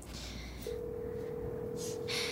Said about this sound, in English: It's ringing.